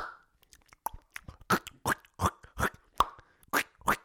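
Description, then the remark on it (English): Gum popping sound effects added for fun to chewing: a quick run of sharp, wet mouth pops and smacks like gum snapping, repeating in an uneven rhythm with about eight louder pops over a few seconds and no talking. “It's like little bits of gum. You know, when they like clearly chewing gum, but I'm chucking in a couple of pops there for fun.”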